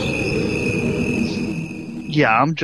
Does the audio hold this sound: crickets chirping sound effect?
yes